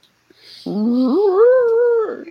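A dog in a room lets out a single drawn-out whimpering whine that rises in pitch and holds for over a second, fairly loud, with no one talking.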